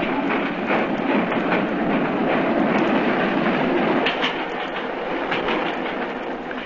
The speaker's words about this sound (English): Stop! Stop the train! It's Moriarty himself. A tall man? He'll never do it. Stop the train, I say!